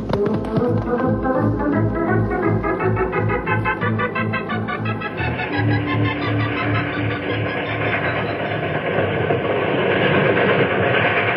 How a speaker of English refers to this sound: This train has to wind around and around to get down the mountain.